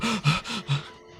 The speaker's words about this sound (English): You just sort of like cover your mouth a bit, breathe in.